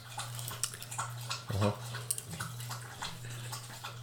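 Wet, irregular slurping of a drink, quick liquid laps and gulps repeating over a steady low hum, with a louder gulp midway.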